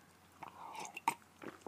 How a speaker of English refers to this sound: Take a sip of the water.